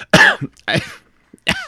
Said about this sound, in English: No. Why would you ask such a question? No, I have had a little bit of a cough this week.